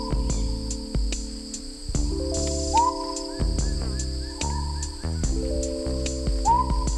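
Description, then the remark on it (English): Male smoky jungle frogs at dusk give high, whistle-like calls that rise in pitch, repeating every couple of seconds over a dense, droning chorus of other night creatures, with no talking. “At dusk, males emerge from their hiding places and vocalize with a high-pitched call, almost like a whistle.”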